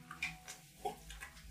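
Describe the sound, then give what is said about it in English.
Wet clothes being put in water and wrung out, then placed in a basket: a few quiet, irregular sloshes and trickling splashes, with no one speaking. “So it's, you hear that kind of like, as he looks for it, puts the clothes in the water, wrings them out, places them in the basket.”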